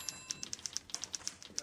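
Typewriter typing: a quick, slightly uneven run of about a dozen sharp, bright mechanical key strikes, clicking steadily on their own with no talking.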